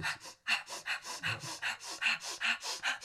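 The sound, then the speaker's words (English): Rapid, forceful nasal breathing of the breath-of-fire technique, done with a finger held up to the nostrils, in a steady rhythm, about three sharp huffs per second, each a short hissing burst of air repeating evenly with no talking. “I'm holding my finger up to my nostrils and doing breath of fire.”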